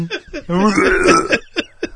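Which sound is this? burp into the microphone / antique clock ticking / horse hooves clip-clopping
burp into the microphone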